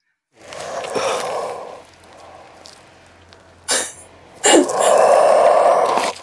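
A leopard tortoise moves and breathes slowly and heavily, with long rasping, breathy exhalations, broken by a couple of brief scuffing sounds as it moves. No voices.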